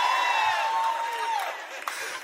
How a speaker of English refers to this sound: Do you notice the difference in the screams? See, the reason y'all got that, all that energy is because you ain't in the fight of your life.